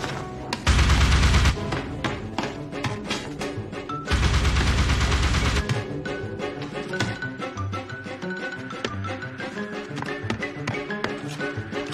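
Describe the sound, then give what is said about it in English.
Cartoon gunfire as the character Quentin shoots trigger-happy at nothing in particular, in two loud, rapid bursts, each lasting a second or more, over bouncy, goofy xylophone music that plinks along steadily before, between and after the shooting. “And as for Quentin, now he's gone completely trigger-happy, shooting at nothing in particular to the sound of goofy xylophone music.”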